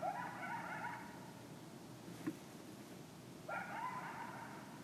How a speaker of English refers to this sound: That's coyotes. They do that like every night.